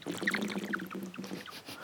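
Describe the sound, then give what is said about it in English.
Someone gulps down a 2-litre bottle of water during a show in quick, steady swallows, with liquid sloshing and gurgling throughout, moderately loud, with no talking. “Well, I drink throughout it. The show. I drink the water.”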